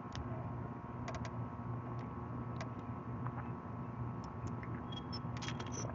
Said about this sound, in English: We got our Propel. I'm about to crack that. Pop that Propel.